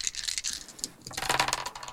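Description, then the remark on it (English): Three purple dice clatter and rattle across a hard tabletop in a quick burst of sharp clicks, moderately loud, with no voices, rolled for a difficult roll. “But these three purple dice are because this is a difficult Roll.”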